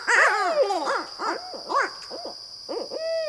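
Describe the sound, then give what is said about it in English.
A barred owl gives a rapid series of loud hooting calls, rising and falling in a rhythmic, almost barking pattern with a few caterwauling notes, and no voices. “And the barred owl also features in the story of the renowned anti-slavery activist”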